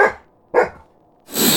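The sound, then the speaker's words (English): A coyote barks twice in quick succession, loud, the yelps sharp and bright, followed by a sudden rush of hissing noise. No one speaks. “The coyote is standing over a mountain of jewels.”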